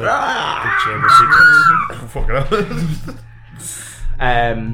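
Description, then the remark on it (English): A voice imitates the screech of a huge worm-like creature splashing into a pool of stagnant water: harsh, rasping, wavering cries in a high-pitched, strained tone, rising and breaking over about five seconds, ending with a short gargling burst. “as you see what looks like a huge worm-like creature just slither and slide off the edge as the rest of you hear just like as it splashes into the pool of stagnant water, screeches.”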